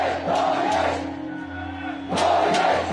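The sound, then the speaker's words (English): A large protest crowd on the streets of cities in Myanmar shouts together against the military coup in loud, rhythmic bursts, chanting in unison with a steady low hum underneath and a brief dip in intensity before the chanting surges again. “Huge crowds are on the streets of the cities of Myanmar, Burma. They're the largest protests in more than a decade.”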